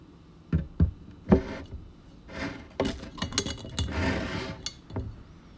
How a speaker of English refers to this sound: The next section will include me chewing. If you'd like to not hear that, skip ahead.